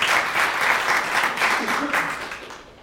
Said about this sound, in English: Yeah, you can clap.